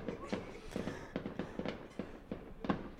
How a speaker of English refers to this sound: The sun's not even fully down, and they're blasting the fireworks.